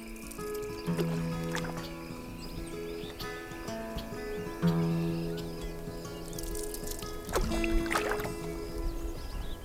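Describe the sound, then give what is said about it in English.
A small boat drifting on a river, with a few unhurried paddle strokes splashing every few seconds over a steady tonal hum in the background. “It's been easy floating the past couple of days, but the river winds back and forth in these big, long S-turns, and sometimes I paddle maybe 10 miles to cover just one as the crow flies.”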